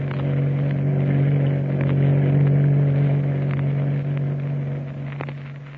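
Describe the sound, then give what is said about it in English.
The engine of the ship's launch Sprayhound roars steadily as it races through the night off the coast of Chile, pursuing another small craft: a loud, low droning hum layered with rushing noise and a few faint knocks, with no voices. “Tex and Kukai and the ship's launch, the Sprayhound, roaring through the night off the coast of Chile, pursuing another small craft bearing Commodore Boom Boom, master of the Nazi sea raider”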